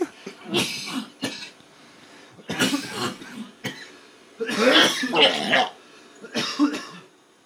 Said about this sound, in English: This is a real sesh right here, which is coughing and hacking and torching.